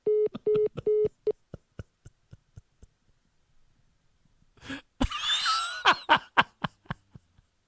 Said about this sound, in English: Well, this hang up brought to you by me.